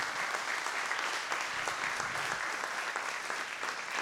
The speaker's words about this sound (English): So just a round of applause for the panelists here for Startup Grants. Congratulations.